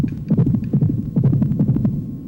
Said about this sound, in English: And then you have the heartbeat that literally just goes like...